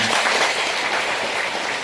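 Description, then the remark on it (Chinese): An audience bursts into steady applause to congratulate a choir after a church performance, many hands clapping in a dense, even wash of sound that holds at a fairly loud level throughout, with no voices. “好，让我们掌声祝贺他们。”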